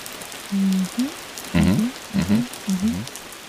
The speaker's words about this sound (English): Yeah, I love that sound. That was a great sound. I like how it fades out, kind of like the rain is passing away.